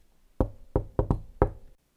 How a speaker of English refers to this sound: So I'm walking in now. I'll knock. Ready? Insert knocking sound effect.